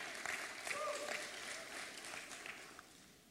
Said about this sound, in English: The ones that clap and get real celebratory when I say things like that is because they realize they've done a lot of things.